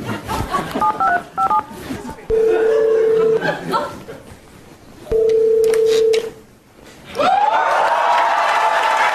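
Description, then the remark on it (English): A quick series of telephone keypad tones beeps out as a call to Stormy Daniels is dialed in a Saturday Night Live sketch, followed by two long steady tones with a pause between them and a rising ring-like tone at the end, with faint crowd noise underneath. “call up Stormy Daniels and fix this once and for all. Maybe keep me on the phone, too.”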